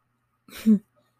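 A single short snore: a breathy, raspy intake that rolls into a low, buzzing grunt, lasting about a third of a second, with silence on either side and no talking.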